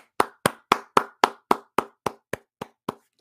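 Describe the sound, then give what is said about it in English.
A steady series of eleven sharp hand claps at an even, fairly quick pace, loud at first and gradually softening toward the end, with no voices. “This week, the Cardinals get a clap.”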